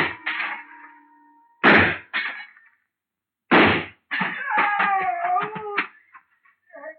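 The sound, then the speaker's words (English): Two sharp, loud gunshots a couple of seconds apart, fired at a glass store showcase that a man is standing on, each followed by bright ringing and a scatter of shattering glass tinkling and clattering down, with no voices. “I started deliberately shooting his foothold out from under him.”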